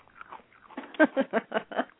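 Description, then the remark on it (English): Chewing, with a run of about five crunchy, evenly paced bites growing louder after softer, muffled mouth sounds at the start; no one talks. “I think that you shouldn't eat unless we all have some food.”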